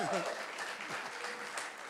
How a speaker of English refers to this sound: Acclamons très fort pour la gloire de Dieu. Let's make a big applause to the glory of God.